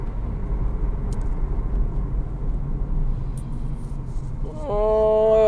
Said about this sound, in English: I'll just suffer in this traffic. This 8 o'clock traffic. Friday night.